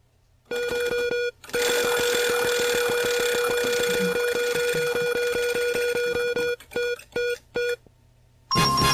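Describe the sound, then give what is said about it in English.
A prize wheel spins with rapid, steady ticking over a bright sustained tone, the clicks slowing into a few separate ticks before stopping, followed by a short high chime. “Didn't have the wheel pulled up.”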